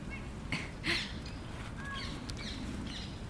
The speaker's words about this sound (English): So beautiful. Can even hear so many just sitting here. Oh, some parakeets.